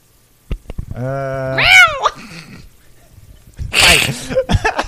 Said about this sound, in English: In a cat fight, who would win? Binks or Salem from Sabrina the Teenage Witch? Ooh, two talking cats, one ring.